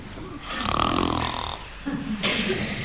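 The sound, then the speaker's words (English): A person loudly imitates snoring, one long rasping inhale followed by a rougher, buzzing breath, both prominent with no other sounds. “Here's somebody giving us full volume of their own breathing.”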